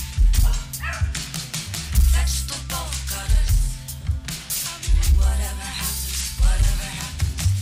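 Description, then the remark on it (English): Dogs bark and yip repeatedly, recorded at home and woven into a music track with a heavy, thumping bass beat; the short, bright barks recur throughout at moderate loudness. “She recorded this at home with a lot of percussion sounds around the house, such as her dogs barking.”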